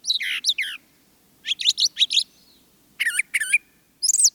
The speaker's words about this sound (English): While mockingbirds usually repeat a song or phrase three or more times before moving on, brown thrashers tend to repeat a phrase only twice.